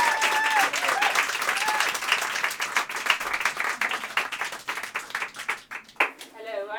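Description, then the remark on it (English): A crowd claps in sustained applause, a dense patter of many hands that thins toward the end, with a few whistles and voices mixed in. “Could you please start the applause?”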